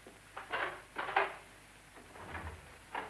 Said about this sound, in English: Oh, very well. Open the door.